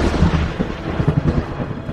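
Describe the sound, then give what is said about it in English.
A loud, sustained lightning and thunder crack effect for a lightning bolt shot from a hand and slamming into a robed figure: dense crackling with repeated heavy booming bursts across two seconds, forceful, with no voices. “Lightning arcs from your hand and slams into the nearest robed figure like a sledgehammer.”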